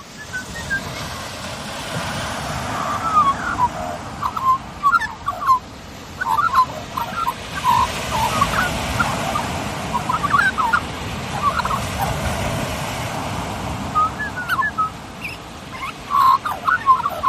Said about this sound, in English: An old magpie, Australian magpie. Anyway, yeah, wow, it's nice and relaxing. Hear the waves coming in like that and little magpie chatting away. He was chatting away fairly with a bit of intent